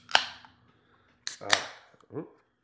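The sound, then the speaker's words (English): Drink cans being cracked open: three sharp, bright pops, each trailing into a brief fizzing hiss, the last two close together, followed by a short murmur from a voice. “I dare say we should pop these puppies open and give that lovely sound to our listeners, yeah?”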